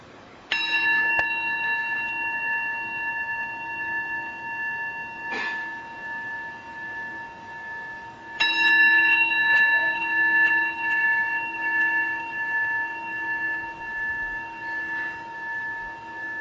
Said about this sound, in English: And we'll listen to the sound of the bell.